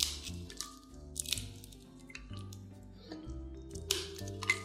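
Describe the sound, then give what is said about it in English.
Stale bread being torn and broken by hand into chunks to go into a blender for breadcrumbs, a series of crisp crackling, crunchy snaps at irregular intervals, heard over steady background music with no talking. “I'm just breaking it into different chunks and putting it into my blender.”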